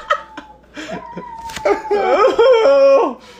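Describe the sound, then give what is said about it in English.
Dogs outside whine in long, wavering, high-pitched cries that slide up and down, several overlapping into a fairly loud chorus after a few short yelps at the start. “Yeah, the dogs outside are set.”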